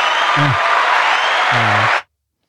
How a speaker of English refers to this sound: Get some applause for that.